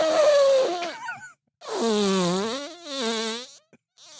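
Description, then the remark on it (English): A voice imitates a fart with the mouth: two drawn-out, buzzy raspberry blasts with wobbling pitch, fairly loud. A short pause separates them, and no one speaks. “I was making a fart noise in my mouth to, like, add the...”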